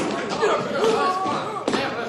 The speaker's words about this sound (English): Okay, fellas, start stomping.